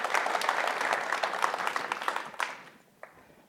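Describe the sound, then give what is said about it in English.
An audience breaks into dense, steady applause that holds for a couple of seconds, then quickly thins out to a few last scattered claps before fading into quiet. “Guys, give them a round of applause.”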